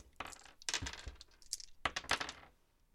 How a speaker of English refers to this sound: Roll me some more discipline dice.